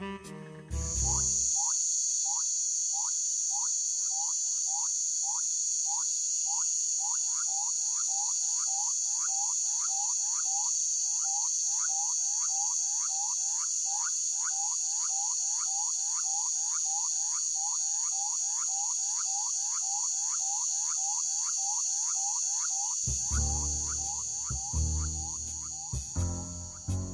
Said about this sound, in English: In southern Mexico, I found some great little frogs.